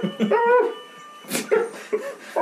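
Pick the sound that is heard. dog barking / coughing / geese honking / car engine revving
dog barking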